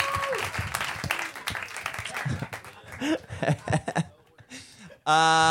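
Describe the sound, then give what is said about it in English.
An audience at a live comedy show breaks into a steady round of applause for performers who came up to do comedy, mixed with chuckles, voices talking over the clapping as it fades, before a sudden loud sustained tone cuts in at the end. “Guys, give them another round of applause for thank you coming up here and getting high and doing comedy.”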